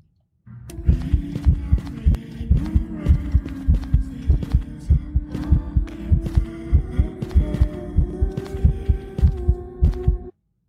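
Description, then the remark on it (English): A heartbeat sound effect from a horror video game: a loud, steady heartbeat thumps in a regular rhythm, with deep low thuds pulsing over a droning hum for about ten seconds, no voices present. “I could tell by the heartbeat.”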